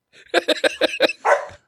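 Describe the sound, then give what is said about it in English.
A dog named Buddy barks in a quick run of about five sharp, evenly spaced yaps, ending with one longer, drawn-out bark. It is fairly loud, and there is no talking over it. “Yes, even your dog's getting into it.”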